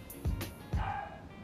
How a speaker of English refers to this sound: I even left the dog upstairs. Dog barking.